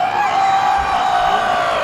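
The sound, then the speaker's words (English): A loud, steady crowd cheer with whoops, a dense wash of voices sustained for about two seconds without any break. “The crowd goes, "Woo!"”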